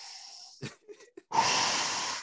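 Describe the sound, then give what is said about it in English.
A voice imitates heavy mechanical respirator breathing: a rasping, hissy inhale, a few short clicks and catches, then a long, loud, steady exhale, with no speech. “Then I heard the breathing.”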